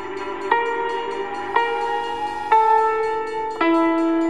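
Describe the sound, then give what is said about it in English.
An Exeter and Paddington train pulls into a station, sounding a long, steady horn that swells anew four times in succession over a low rumbling background, fairly loud, with no voices. “Exeter and Paddington train just coming in.”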